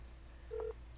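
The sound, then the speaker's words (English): Telephone keypad tones beep as a number is dialed to call Paul Sims, the show's creator, one clear tone held briefly and another starting just after, crisp over a faint low hum. “We're going to call the creator of the show, Paul Sims, and see if he's got anything to say about this episode.”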